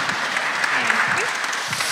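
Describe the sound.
An audience claps steadily for about two seconds for a reader about to read a Bible passage, a dense, even patter of many hands at a moderate level, with faint murmuring voices mixed underneath.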